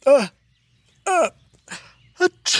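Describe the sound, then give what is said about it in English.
A drawn-out, theatrical sneeze from someone who is stuffed up with a bad cold: two rising, voiced gasps separated by pauses, a few short catches, then a sudden loud, hissy burst at the end. It sounds like a voice performing the sneeze. “Bless you”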